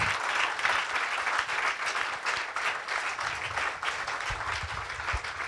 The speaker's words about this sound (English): Est-ce qu'on peut applaudir la présence de Dieu ce matin? Est-ce qu'on peut applaudir plus? Oh, can we clap louder? I'm sorry. Louder than that, louder than that.